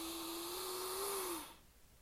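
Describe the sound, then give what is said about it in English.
A long, deep inhale: a steady, airy rush of breath lasting about a second and a half, carrying a faint low hum, then cutting off into quiet. “Inhale.”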